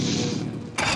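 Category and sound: vehicle, boat engine starting up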